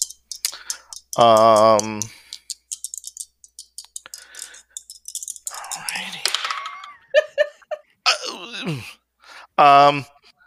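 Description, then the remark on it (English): Dice rattle and clatter in a quick burst of sharp clicks, followed by scattered taps, while a person groans and vocalizes loudly in between. “I am moving back away from the Malachite dice. Go back to my trusty dice.”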